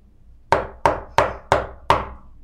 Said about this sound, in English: Knock on the front door